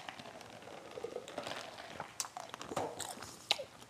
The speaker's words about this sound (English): Let me grab a drink of water real quick.